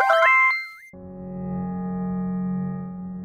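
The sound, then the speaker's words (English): A quick burst of beeping tones, several short pitched blips, as a rotary phone is dialed to call a guest, followed by a steady, low droning buzz that holds for a few seconds. No voices. “So let me grab the rotary phone here and bleep bloop somebody in here for our guest.”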